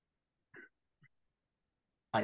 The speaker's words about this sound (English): I just start coughing.